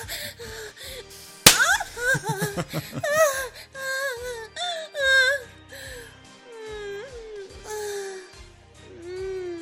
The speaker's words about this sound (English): Father Winter, her moans sound delicious.